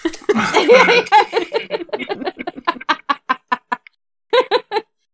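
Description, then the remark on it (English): A voice makes disappointed clucking noises like a hen, a lively run of short bursts that grow choppier and quieter, pause, then return as three quick clucks, with a laugh-like quality. “him, making disappointed clucking noises.”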